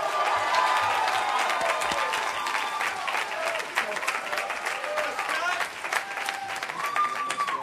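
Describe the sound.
A crowd at a campus event breaks into sustained applause for a student being introduced to speak, dense clapping steady throughout with scattered cheers and voices mixed into the noise.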